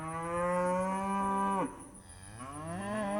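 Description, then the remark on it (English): A cow lets out a long, loud moo that holds steady, breaks off, then rises into a second bellow, with no one talking, as cattle on a farm are herded to grazing pasture and pushed forward by a pickup truck. “While Powell runs to the front to lead the cows, his grandfather uses a pickup truck to push them forward.”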